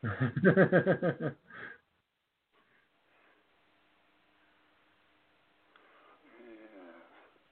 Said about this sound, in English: And we got the howler monkey dog going off on the floor above us. That's always nice.